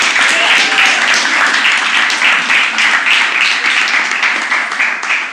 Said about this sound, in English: I know we had you stand up, but you are worth celebrating all day long. So can we please give another round of applause to our amazing moms?